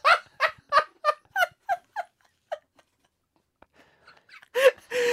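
Parrots squawk in a rapid series of loud, harsh calls that fade and thin out, followed by a brief lull before one more burst of squawking near the end.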